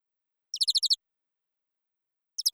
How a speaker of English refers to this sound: I hear birds. Are there birds somewhere? I don't know. Hold on a sec. Oh, I think they're here.